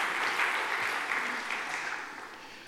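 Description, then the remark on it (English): A crowd applauds with steady, dense clapping that holds at an even level for nearly three seconds before tapering slightly at the end, with no voices standing out. “You can clap that one.”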